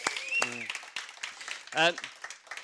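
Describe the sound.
A short burst of audience applause for someone who appeared in a video, scattered claps mixed with a couple of voiced cheers or whoops, moderately loud, lasting only a few seconds.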